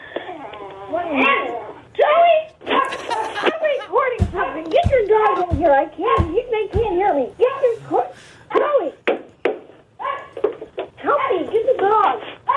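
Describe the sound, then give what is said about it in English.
A chihuahua yaps and whines in a steady run of high, shrill, pitch-bending barks, with a few sharp clicks and thumps partway through. “he's a chihuahua who thinks he's a Doberman”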